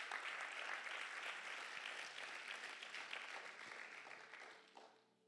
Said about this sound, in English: Come on. We should clap our hands for that.